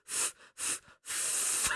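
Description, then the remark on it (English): Three breathy puffs of air from the video game character Ellie trying to teach herself to whistle, two short ones then a longer sustained blow, hissy and airy with no clear whistle tone emerging. “And he quietly navigates some loose clickers while Ellie blows air to try to teach herself how to whistle.”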